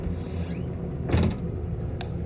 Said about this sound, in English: Then I heard the kitchen door swing open and the light click on.